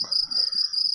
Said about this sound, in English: Nice. The crickets.